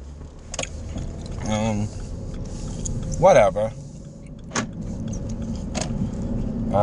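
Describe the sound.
Steady low road and engine rumble fills the cabin of a moving car, heard from inside, with a man speaking over it and a few brief clicks and jingles.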